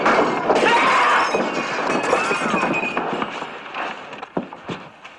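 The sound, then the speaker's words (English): Two glass bottles of 8-year-old scotch shatter in a loud crash, followed by scattered tinkling and a few sharp knocks as the noise trails off over a busy, clattering background. “2 bottles of toenail juice. The scotch. 8-year-old scotch.”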